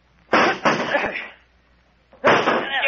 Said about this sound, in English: Break down the door. That's it. Grab that chair. Stand back, Doc. Get away from the door.